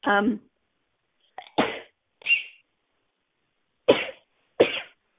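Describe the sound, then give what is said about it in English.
A string of about four or five sharp, explosive sneezes, separated by brief silent pauses, with a short breathy vocal sound at the start. “I even woke up my cat with those sneezes.”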